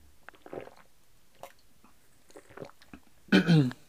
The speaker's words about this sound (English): let me get a sip of tea here.